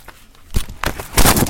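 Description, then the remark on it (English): Crinkly rustling of a chocolate bar's paper outer wrapper and gold foil inner wrapper being unwrapped, with a few sharp crackling bursts building to a louder, sustained crumple near the end, no voices. “It has like a paper outer wrapper. And it has a gold inner wrapper.”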